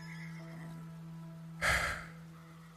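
A horse gives one short, breathy neigh as it is stopped at a crossroad by a dirt road along a river, fairly loud, rising abruptly over a steady low background hum, with no voices around it.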